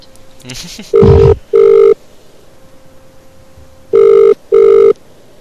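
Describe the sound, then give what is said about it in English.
A ringback tone on an outgoing phone call to the speaker's dad: two pairs of steady electronic double rings separated by a pause, fairly loud and clear, with a brief bit of handling noise at the start. “Right, let's try phoning him up.”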